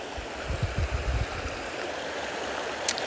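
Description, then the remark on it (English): Close, steady rush of river water lapping and rippling over rocks, with a few soft low thuds early on and a brief bright splash near the end; no voices. “And I'm going to get closer to the water so you can hear the rippling waves against the rocks.”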